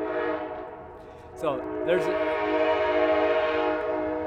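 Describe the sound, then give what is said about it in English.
An Amtrak passenger train's horn blares loud in one long, steady chord, with rumbling rail noise underneath and a brief voice exclamation partway through; the train came out of Los Angeles, is headed for Chicago and has just come over the pass. “Man, that thing's loud. Oh, Amtrak. That Amtrak, oh, I wish you could see it.”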